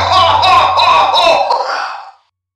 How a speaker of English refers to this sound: He switched off. That's a bad cough he's got.